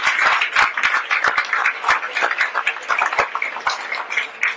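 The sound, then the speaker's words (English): An audience bursts into sustained applause for a donation to a museum, a dense wash of many hands clapping at once, with sharp individual claps standing out over the steady roar for several seconds. “Oh, yeah, please, round of applause.”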